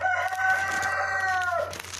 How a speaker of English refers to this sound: Sorry about the rooster.